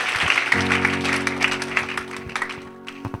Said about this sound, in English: In Jesus' name, give the Lord a hand clap and you may be seated.